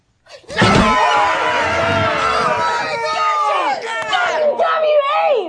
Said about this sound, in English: Okay, just remember, while all this celebrating and table slapping is going on, they're literally sitting there with the family of